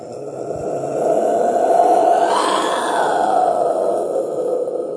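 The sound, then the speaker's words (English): A voice imitates a band's private jet taking off from Ames Airport, a sustained, strained roaring rumble that swells and holds for about five seconds with a rising whoosh midway, no words spoken. “… private jet taking off from the fucking Ames Airport.”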